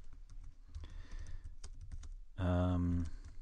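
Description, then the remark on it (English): Rapid, irregular computer keyboard clicks patter steadily over a low background rumble, then a brief, louder voiced sound briefly takes over near the end before the typing resumes. “I hear someone typing.”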